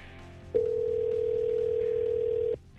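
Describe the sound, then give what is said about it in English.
A single steady telephone ring tone sounds for about two seconds over a faint background hum, then cuts off abruptly, as radio station New Country 103.1 calls a contest winner on the line. “and we're getting our winner on the phone right now.”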